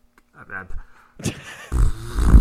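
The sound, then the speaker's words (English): A brief, faint voiced tone gives way to a loud, raspy fart sound effect, played during a radio bit: low, airy sputtering bursts that swell and grow louder toward the end. “So do you do the fart sound or do you do the oh yeah sound if I agree with you?”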